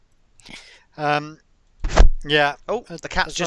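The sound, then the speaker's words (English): A cat knocks a knob off a microphone: a single loud thunk, a sharp knock against the mic, surrounded by short bursts of a voice. “The cat's just knocked my knob off. Let me just put my knobbly bit back on the microphone.”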